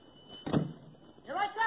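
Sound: door opening and closing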